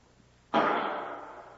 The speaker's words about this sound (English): That sounded like a pistol.